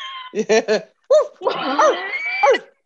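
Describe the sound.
A person imitates a dog barking: three quick barks, a short pause, a single bark, then a longer run of yelping, whiny barks, loud.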